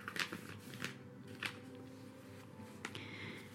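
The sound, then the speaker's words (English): A piece of paper found inside a box being unfolded: a few sharp crinkling rustles at irregular intervals over a low background hum, with quieter handling sounds in between. No one speaks. “As you can probably hear, I'm unfolding a piece of paper that was found inside of this box.”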